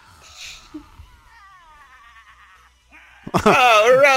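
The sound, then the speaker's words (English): A faint, warbling electronic tone wavers for a couple of seconds, then a loud, quavering, goat-like bleat bursts in, shaky and processed: the cry of the monster Robo-Goat, subtitled "Evil Bleeding". “Oh, Robo-Goat! Robo-Goat! And the subtitles say, Evil Bleeding.”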